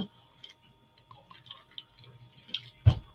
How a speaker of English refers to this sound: Let me take a sip here.